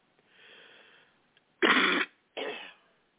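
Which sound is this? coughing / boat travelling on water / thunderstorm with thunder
coughing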